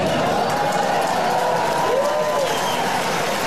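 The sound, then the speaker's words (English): A large audience cheers and applauds continuously, a dense wash of clapping and voices at steady, fairly loud volume, with a few whoops rising out of the crowd noise. “Sheep cheering.”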